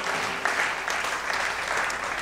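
A crowd at a morning church sermon claps for the Lord steadily, a dense wash of overlapping hand claps at an even, fairly loud level with no voices on top, sustained throughout.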